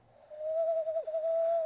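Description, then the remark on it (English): A person imitates an owl with one long, steady hooting note that wavers briefly in the middle, fairly loud, with no talking over it. “Does anyone want to hear my owl?”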